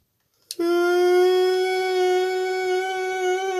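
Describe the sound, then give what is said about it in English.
A tornado siren blares after a sharp click, a loud, steady, buzzy tone rich in overtones that holds one pitch for about three seconds without any voices. “Was that the tornado siren?”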